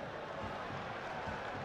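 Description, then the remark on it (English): Wrexham football fans applauding player McLean as he steps up to take a corner in a match against Notts County, a steady, dense wash of clapping that holds at an even, fairly soft level throughout, with no distinct individual claps standing out. “It's McLean being applauded by the Wrexham fans behind him.”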